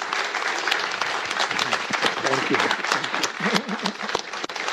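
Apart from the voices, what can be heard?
audience applause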